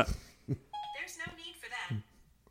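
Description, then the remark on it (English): A short electronic chime, an iPhone's Siri voice assistant activating after mistaking a spoken word for Hey Siri, rings out with a couple of bright rising tones, clear amid a person talking. “But like, Surihime is definitely something that once every couple of weeks, my phone would mistake for Hey Siri.”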